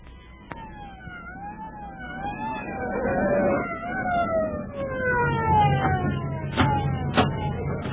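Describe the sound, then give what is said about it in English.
A wailing fire engine siren sweeps up and down repeatedly over a rumble of engine and traffic noise, steady, with a few sharp clanks near the end. “Seems to be much of a fire.”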